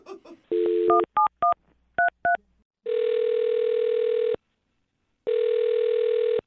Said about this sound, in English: are you ready to make the phone call? Yeah, please. Let's do it. All right, here we go.